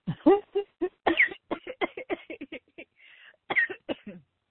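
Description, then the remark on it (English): A loud coughing fit after choking on water: a rapid run of sharp, sputtering coughs, a brief wheezy breath in the middle, then a few more harsh coughs trailing off. “I'm like, you make me like cough on my water here.”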